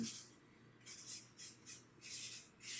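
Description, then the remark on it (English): Sharpie markers squeak and scratch across paper in a series of short, uneven strokes, soft, with no one talking. “Just pens, yeah, Sharpies just on paper.”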